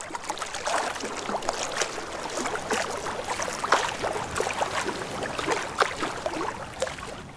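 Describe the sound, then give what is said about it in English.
Continuous water splashing and sloshing, like someone paddling and swimming through water, with rhythmic bursts of spray and no voices. “Splash! Let's swim!”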